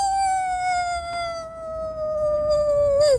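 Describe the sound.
A person imitates a wolf howl as a live sound effect for a Halloween story: one long, loud note that slowly slides downward in pitch and wavers at the end, with no other sounds around it.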